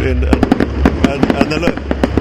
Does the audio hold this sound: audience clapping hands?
no